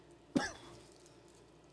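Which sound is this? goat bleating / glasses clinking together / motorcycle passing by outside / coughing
coughing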